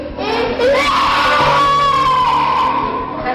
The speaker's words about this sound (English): People, you know, just screaming and writhing in convulsions.